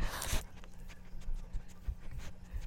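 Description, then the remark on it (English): A dog named Tito sniffs at a microphone: a loud breathy rush of air at first, then a string of short, soft snuffling puffs mixed with low muffled bumps, with no talking. “He's sniffing it.”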